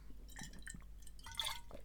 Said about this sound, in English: I'm getting a sore throat already from talking. Hold on. Having a sip of water.